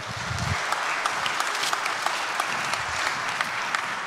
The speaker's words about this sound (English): So I'd like to invite my volunteers if they could join me up here. How about a round of applause for all of our volunteers?